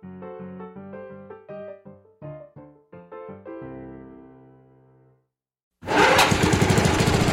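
A short run of plucked musical notes fades out, a brief silence follows, then a lawn mower engine mowing the lawn at the Mutual Audio Network abruptly roars in, loud, steady and rough, running for the final second and a half.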